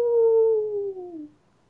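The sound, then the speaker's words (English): A person lets out a single long howl of pain as a blade carves into her back, loud, the pitch sagging downward before it trails off, with no other sounds around it. “Dash, you gotta stay still or I'll keep missing, scolded Pinky as her friend howled.”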